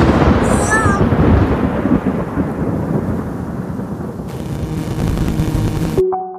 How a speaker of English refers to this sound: Boy, this thunderstorm is getting pretty wild. Oh, it's getting pretty windy.